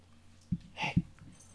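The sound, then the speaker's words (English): Two dogs come into a quiet studio: two soft thuds of movement, with a brief high-pitched whine in between, and no talking. “Hey. Harlow's in. Now Lola. Hi, dogs.”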